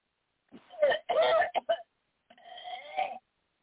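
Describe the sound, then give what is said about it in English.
During a deliverance prayer in Jesus' name, a person coughs as told to cough it out: a run of rough, voiced coughing bursts, two longer hacks followed by two short ones, then a drawn-out strained groan-like cough. Moderately loud, with no talking over it. “Cough it out now.”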